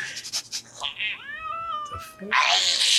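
A cat lets out a long, wavering meow up close, followed by a loud, harsh hiss, with a few brief scuffling sounds just before.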